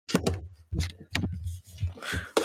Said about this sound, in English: Oh shit, I dropped my microphone on the keyboard.